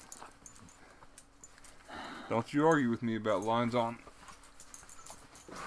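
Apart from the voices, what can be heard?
dog whimpering and yipping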